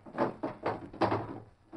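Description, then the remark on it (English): A wooden table drawer with a gun inside is pulled open, giving a few short scraping, rattling bursts in quick succession, then a pause and one last soft knock. “Like this one I stuck in the table drawer the other day.”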